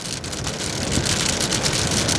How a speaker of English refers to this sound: You know, one of these summertime squalls that just pops up, but then you get right through it.